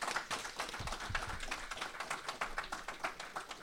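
audience applause

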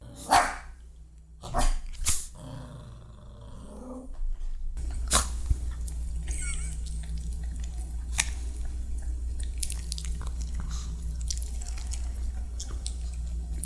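pomeranian dog barking

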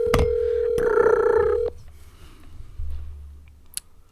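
telephone dialing tones

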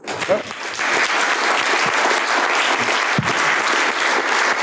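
audience applause

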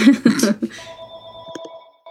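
landline telephone ringing

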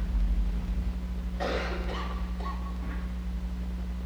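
coughing

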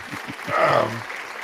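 applause

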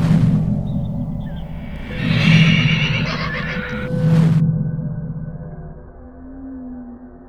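horse neighing

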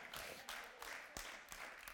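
a few people clapping

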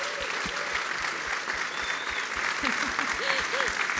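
audience round of applause

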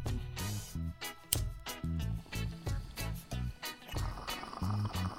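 bong water bubbling

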